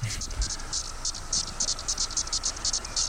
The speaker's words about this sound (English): And then there's like this other one. Magis cicada septem decula, which is kind of in the middle in terms of size.